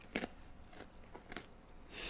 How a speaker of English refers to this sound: We try not to crunch on our podcast, but yeah. We're crunching now. Sorry about that, guys.